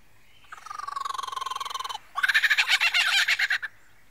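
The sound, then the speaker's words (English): A male lyrebird mimics a kookaburra call: two loud bursts of rapid, chattering pulses, the second harsher and more intense, with no other sounds around them. “And he does that by copying the songs of all the other birds he hears around him, such as the kookaburra.”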